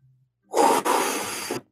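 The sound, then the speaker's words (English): A loud, breathy rush of air: a short intake that breaks briefly, then a longer, steady exhale lasting about a second, with no talking around it. “Oh, I like breathing.”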